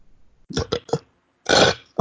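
A loud burp: three short guttural gulps in quick succession, a brief pause, then one longer, fuller belch, with no talking.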